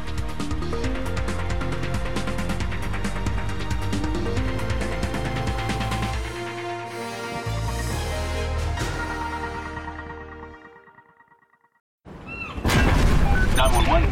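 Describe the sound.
A loud, booming explosion sound effect, an explosion on a cruise ship, roars and rumbles for several seconds, then fades away into silence before a voice begins speaking.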